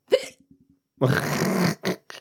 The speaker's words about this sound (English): Oh, my gosh. I have the hiccups. Hiccups. Oh, boy.